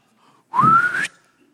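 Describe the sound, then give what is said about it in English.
A person gives a single short, weak whistle that glides upward in pitch, lasting about half a second, clear with no talking over it. “It's a weak whistle.”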